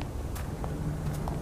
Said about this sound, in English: Sounds like footsteps. I do. We've got to follow them, quickly!